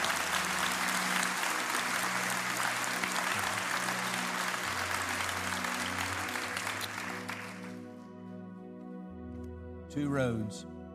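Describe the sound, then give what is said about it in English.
An audience gives a hand clap of praise, clapping steadily for about eight seconds over sustained keyboard chords; the applause then fades, leaving the held notes and a brief rising, sweeping tone. “Yeah, let's give him a hand clap of praise, would you, right now?”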